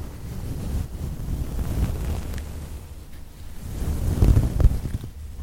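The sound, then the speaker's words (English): Soft, fairly sparse eyelashes brushing right against a microphone make a continuous, muffled whooshing that swells and recedes like gentle waves, growing a little louder near the end. No one speaks. “It sounds like gentle waves.”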